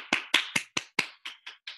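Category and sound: human body sound, one person clapping hands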